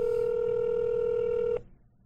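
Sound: telephone dialing tones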